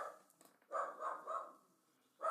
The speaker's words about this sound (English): Oh my god, there she goes! She's barking!